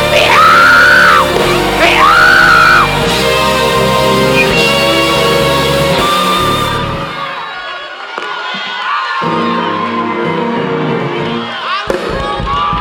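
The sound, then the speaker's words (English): A large crowd shouts and yells together in a loud, sustained roar, with high whooping cries rising over the din and an organ-like tone sounding beneath the noise. “Scream, shout, scream, shout, scream, shout.”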